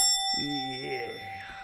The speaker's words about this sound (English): Thought of the month. Can we hit the bell?